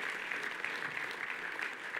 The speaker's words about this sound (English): Look at all those moms. Let's give them a round of applause, shall we?